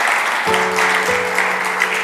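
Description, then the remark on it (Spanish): An audience claps steadily for about two seconds in praise of the Lord, a dense, even wash of applause. A sustained low organ or keyboard chord enters partway through beneath it. “¿Hay alguien que le pueda dar un aplauso al Señor por las cosas buenas que Dios hace?”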